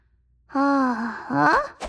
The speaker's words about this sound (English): Doodle Bear rubbed his eyes and stood up, yawning.